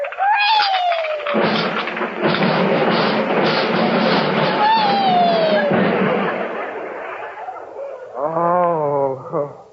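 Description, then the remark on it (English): A long, loud crash of a china closet full of expensive Wedgwood china and cups and saucers smashing and tumbling goes on for several seconds after a child rocks on it, with sliding whistle-like tones over it. A brief wavering cry follows near the end. “You smashed the whole thing to pieces.”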